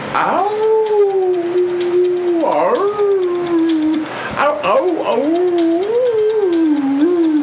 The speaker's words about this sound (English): One day passes, nothing changes. 2 days pass, still howling. 3 days, 5 days, 1 week, 2 weeks, 1 month, still howling. No signs of stopping.